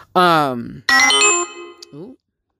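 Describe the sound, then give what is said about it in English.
A mobile phone ringtone plays loudly right next to the microphone, two bright melodic bursts with sustained electronic tones, trailing off into a short, softer chirp after about two seconds. “My phone was near the mic, but I posted it on the Instagram page.”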